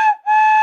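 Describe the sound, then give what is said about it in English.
A loud, shrill whistle from a bag of whistles sent in the mail is blown twice in quick succession, a brief toot followed by a sustained blast with a bright, steady tone, alone. “The way it works is you get sent a loose bag of whistles in the mail, and then you can make sounds like this.”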